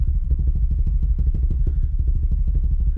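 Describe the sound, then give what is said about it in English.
A voice performs a vocal drum roll, a steady, rapid, low-pitched rolling imitation of a helicopter, a loud chopping buzz of quick even pulses that continues without a break for the whole clip. “Sounds like a helicopter.”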